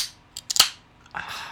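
A can of carbonated blackberry lemonade flavored yerba mate drink cracks open: a few sharp metallic clicks ending in one loud pop, then a short fizzing hiss that rises and lingers.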